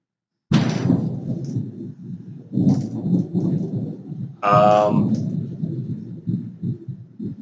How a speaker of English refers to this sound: Storm getting pretty good around here.